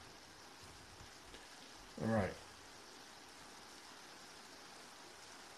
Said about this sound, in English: Starting to rain a little more heavily now.